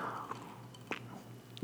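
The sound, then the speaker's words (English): A quiet sip of water: a few soft wet mouth clicks and a gulp spaced over a second or so, with a faint steady hum in the background and no talking. “Sorry to take a sip of water.”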